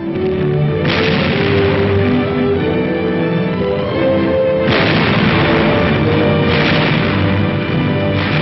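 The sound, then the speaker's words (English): Heavy naval guns of a US battleship firing: three loud, booming blasts spaced a few seconds apart, each a broad crack over a constant deep rumbling roar that never lets up. No one speaks. “Uncle Sam's battle wagon. Pretty sweet music, huh?”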